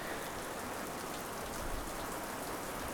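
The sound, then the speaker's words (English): Steady rain patters against glass in a dense, continuous hiss of tiny taps, fairly soft, with no voices or other sounds breaking through. “It's raining here now, so you can just see bits of rain on the glass.”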